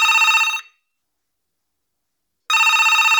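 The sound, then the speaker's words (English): A telephone rings in two bright, trilling bursts separated by about two seconds of silence, clear and fairly loud, with no voices present. “Helga's phone number was at the bottom of the page. I called it.”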